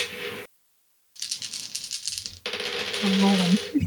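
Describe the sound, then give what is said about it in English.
A handful of six-sided dice rolled for fire and psychic damage clatters and rattles across a hard surface in two bursts separated by brief silence, fairly loud, with a low hum underneath. “Let me roll a bunch of dice here.”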